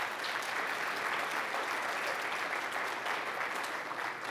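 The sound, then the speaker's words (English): An audience applauds steadily, a dense, even wash of many hands clapping at a constant, moderately loud level for the full few seconds, with no voices breaking through. “I actually think that's worth applause, personally.”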